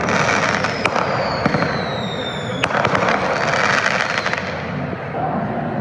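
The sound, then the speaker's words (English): Firework mortars, set off at random in and around a crowd in front of the Justice Center at around 9:30 p.m., bang sharply several times over dense, roaring crowd noise, with crackling and whistling streaks of rising pyrotechnics. “People were setting off fireworks, mostly mortars, at random in and around the crowd.”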